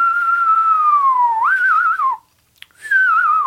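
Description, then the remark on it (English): A clear reverse whistle made by sucking air inward: a long tone sliding slowly downward, then wavering, a short pause, and a second wobbly falling phrase. “I can whistle when by sucking. You can reverse whistle. I suck air into whistle.”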